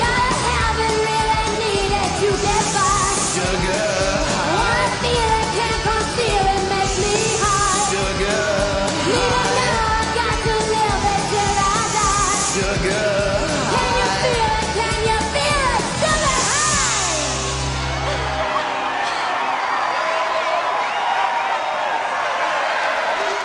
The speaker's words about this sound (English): I choose to think that applause is for us for playing great songs and talking about Rolf Harris. Oh, I thought you meant that applause was for us before we've done anything.